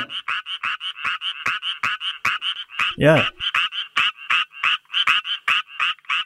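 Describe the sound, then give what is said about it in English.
A frog calls in a steady, rapid rhythm of bright, buzzy pulses, repeating continuously, with a brief spoken word cutting in partway through. “Oh, this is a wonderfully charming sounding frog.”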